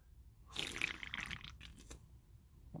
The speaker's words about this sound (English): Oh, I had a good big sip of the beer after that one.